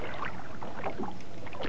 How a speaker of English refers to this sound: I like the sound of water, though. It is. I like, it's a nice calming sound.